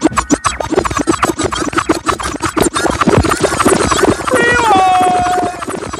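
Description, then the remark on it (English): A DJ rewind effect: loud, rapid scratching stutters as a track is spun back, ending in high warbling pitch glides that sweep downward before the music resumes. “I deserve a rewind real quick.”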